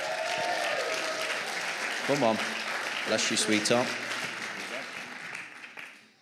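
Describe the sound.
A crowd claps steadily for a woman being introduced as the next speaker, a dense, continuous wash of applause that fades toward the end, while a couple of voices speak briefly over it.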